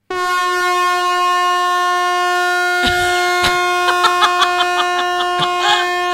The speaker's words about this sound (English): Listen what happens when I tap the air horn on this one.